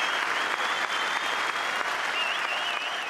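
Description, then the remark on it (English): A large outdoor golf crowd at the 2021 Open Championship claps and cheers steadily after Collin Morikawa holes his final putt to win, a dense wash of applause with a few high whistles rising above it, sustained at an even level without pause. “Oh, listen to those cheers.”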